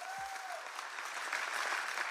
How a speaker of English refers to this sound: Come on, let's clap for Jesus. It's good to be in his house.